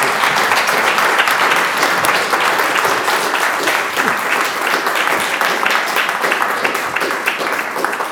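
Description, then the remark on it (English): Sustained audience applause for a final presentation, a dense, steady wash of many hands clapping at an even loudness for the full eight seconds, with no voices standing out above it. “Let's a round of applause for that final presentation.”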